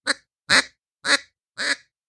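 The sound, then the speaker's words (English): Four short, bright quacks from a duck call, evenly spaced about half a second apart, loud with silence between them and no talking. “Or you can get them little short, happy quacks.”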